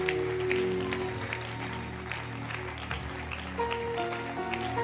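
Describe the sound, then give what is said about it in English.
An audience claps to celebrate their prophet, Bishop Dagwood Mills, in a dense, continuous wash of hand claps lasting throughout, with sustained keyboard-like musical tones underneath. No voices stand out. “And I want to hear a louder hand clap as we celebrate our prophet, Bishop Dagwood Mills.”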